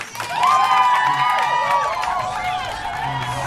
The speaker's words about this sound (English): You hear cheering, but no one around the circle has their mouth open. You find yourself at the amphitheater.